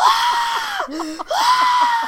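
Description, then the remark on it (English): A voice imitates a terrified scream at a jump scare during the film Woman in Black: a loud, high-pitched wail lasting about two seconds that briefly breaks and dips in the middle before rising again. “And so we're sitting there in Woman in Black, and he is literally screaming like I'm stabbing him in the stomach every time there's a jump scare.”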